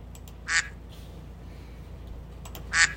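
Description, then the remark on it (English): A duck quacks twice, each call a short, nasal, clear burst, spaced about two seconds apart over a faint low background hum, with no talking. “It's a singular quack.”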